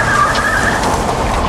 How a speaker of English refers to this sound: Sepulveda grips the side of the truck, holding on for dear life, as Avalos speeds them to the break room on level 90